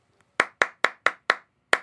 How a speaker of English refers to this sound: This is a clap it back song about love and rainbows. To play this clap it back, all you need to do is clap back the rhythm of the words that I say.